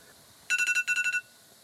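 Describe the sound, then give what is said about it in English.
A kitchen timer, set while steaming rice, beeps eight times in two quick bursts of four, each beep short, bright and high-pitched, sounding alone against a faint background hum. “Blip, blip, blip, blip, blip, blip, blip.”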